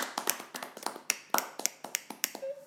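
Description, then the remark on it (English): Scattered applause from a small audience welcoming Luke Mujork: crisp, irregular claps overlapping in a loose patter, fairly quiet, with no voices, ending with a faint brief tone. “Give him a clap.”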